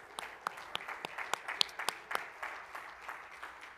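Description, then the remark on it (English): A group of people clapping their hands to praise God in the morning. A steady scatter of sharp, overlapping claps forms a continuous bed of applause, fairly quiet and with no voices over it. “Oh, let's clap our hands and praise Him this morning.”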